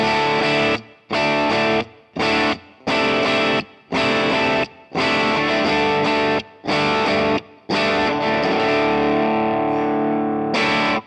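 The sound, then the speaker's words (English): Distorted electric guitar played through a Marshall amplifier with a boost and a delay effect strums loud, rhythmic chord bursts separated by short silent gaps, played alone with a thick, saturated tone. “And it's got a delay on it.”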